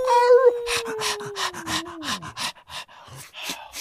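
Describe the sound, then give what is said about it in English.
A dog howling segment sound effect: a single long howl that slides slowly downward in pitch, accompanied by steady, rhythmic panting breaths that continue after the howl fades. “But the story I want to talk about in detail today is this week's Hound Dog of the Week. Ow, ow!”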